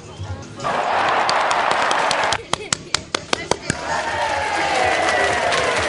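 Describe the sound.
An audience claps for a departing guest co-host of the show FPM Play, first as a dense wash of applause, then as about eight loud, separate claps in a quick rhythm, followed by crowd noise and voices cheering.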